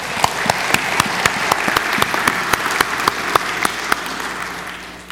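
A crowd applauds steadily for about five seconds for a guest's birthday in the morning, a dense wash of clapping with a few sharper individual claps standing out, fading slightly at the end.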